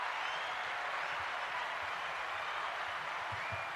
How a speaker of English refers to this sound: Let me give you a round of applause.